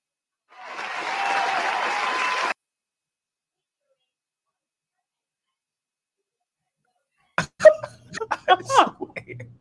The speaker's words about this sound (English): Not with the sound effects right now. We got it. You did an applause.